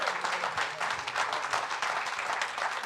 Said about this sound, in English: And let's give Brother O.C. Marler and the good Lord a hand clap.